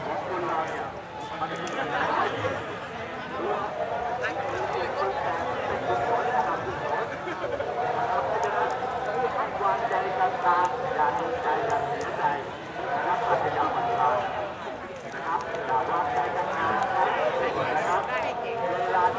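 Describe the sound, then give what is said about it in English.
Horse hooves clop along steadily beneath a dense layer of crowd chatter and overlapping voices, the hoofbeats mingling with the busy, constant murmur throughout. “Guys clapping coming right down by me.”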